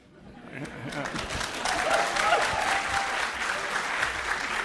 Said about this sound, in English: I don't know why people clapped, but I'm going to clap that person for excellence of singing.